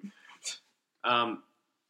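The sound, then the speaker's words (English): A person's voice imitates a dog's bark while joking about a character from the anime Bleach: one loud, gruff voiced "woof" after a couple of brief breathy sounds, then silence. “And then you take it off and he's got like a dog fox. Spoilers. Borf. Borf.”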